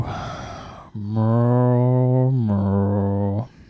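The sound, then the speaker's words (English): A person imitates a cow's moo: after a breathy lead-in, a long, low, droning moo with a brief break partway through, sounding mournful and drawn out. “It is a cow whose mother just got diagnosed with stage 4 brain cancer”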